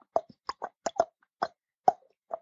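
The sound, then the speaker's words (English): A series of about eight sharp, hollow tongue clicks against the roof of the mouth, popping in an uneven rhythm with brief silences between, each a short mid-pitched knock. “Sometimes I'll click my roof, my tongue against the roof of my mouth.”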